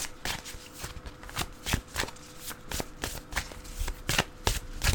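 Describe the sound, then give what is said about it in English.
A deck of affirmation cards being shuffled, a steady series of quick papery riffles and flicks repeating for several seconds, with no talking. “So I'm gonna go first. So let me shuffle.”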